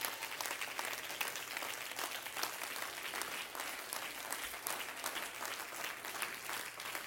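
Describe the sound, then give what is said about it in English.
A crowd of people clapping their hands to the Lord in steady, sustained applause, a dense crackle of many hands with no one speaking, holding at an even level throughout. “Everybody clap your hands to the Lord for a moment.”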